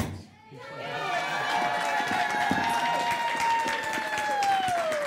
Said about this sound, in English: And cheer him on. One, two, three.